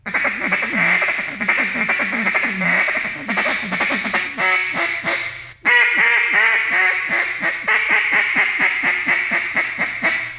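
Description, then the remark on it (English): A raspy duck feed call, blown loud with the caller opening and closing the throat, as a fast, steady run of gravelly chattering notes for about ten seconds, with one brief pause midway before the chatter resumes. “Raspiness is for getting, you know, opening my throat up, closing it down, opening my throat up.”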